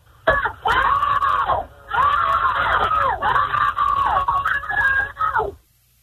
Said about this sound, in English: I want all you guys to scream. Scream? Call for help, guys. They hear you. Call for help.